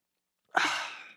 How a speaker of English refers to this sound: Let me take a sip. Soda water.